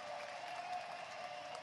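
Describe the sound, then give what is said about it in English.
A baseball stadium crowd of more than 17,000, on its feet, cheers and applauds in a steady, dense roar of clapping and voices that stays at an even level throughout, with no clear speech on top. “It's Jason Donald, and a crowd of better than 17,000 to its feet.”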